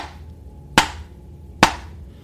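Two sharp, hard knocks sound a little under a second apart, each striking loudly and fading quickly, over a steady low rumbling background with no voices; a knocking sound in the tunnels of a mine.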